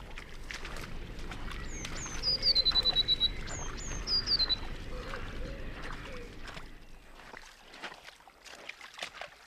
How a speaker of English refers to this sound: And I'm sure if you listen, you will hear some blue tits now.